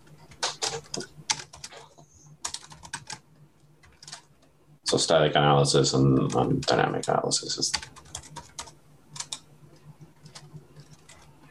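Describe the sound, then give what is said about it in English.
Rapid, fairly crisp clicking of keys on a computer keyboard, in bursts before and after a short stretch of a person speaking. “Boy, my spelling brain and my typing brain don't go together, which is a problem.”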